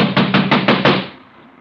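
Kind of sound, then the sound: impact, pounding on a door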